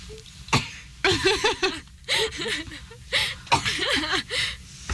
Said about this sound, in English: Just cough, just get it out. Literal tears running down her face. I'm sorry, it's really obnoxious to cough into the microphone. And I just started crying